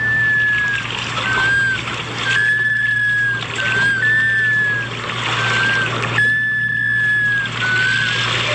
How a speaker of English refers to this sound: she'd heard a clear, plaintive whistle coming from the vicinity of a large gathering of sea ducks. She did a little internet search and concluded that the whistles were coming from today's Talking Birds featured feathered friend, the black scoter.